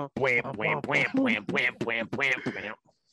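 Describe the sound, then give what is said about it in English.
A run of about eight loud squawking calls from chickens, coming in quick rhythmic bursts one after another before cutting off to near silence. “Chickens. I have not heard.”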